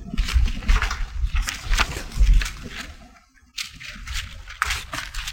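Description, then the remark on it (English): Gusty outdoor wind buffets the microphone in rumbling, uneven bursts with a broad hissing rush, dropping to a brief lull partway through before picking up again. “It's really windy out here today, so be patient.”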